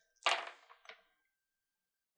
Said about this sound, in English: Dice are only happy when they're being jumbled around. You're picking them up and just dropping them.